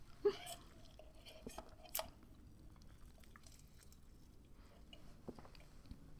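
Someone takes a drink: soft wet gulps and mouth clicks, a few brief swallows spaced over several quiet seconds, with no talking.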